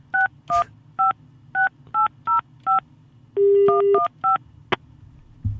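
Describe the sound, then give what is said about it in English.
A string of about ten touch-tone keypad beeps as a long-distance phone number is dialed, each tone short and evenly spaced, with a steady dial tone briefly underneath midway. No one speaks. “Do I have to dial the one? Yeah. It's a long distance number.”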